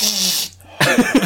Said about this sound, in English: He's not snorting cocaine. Yeah. He's just got the sniffles. I do got the sniffles. Get that post-nasal drip.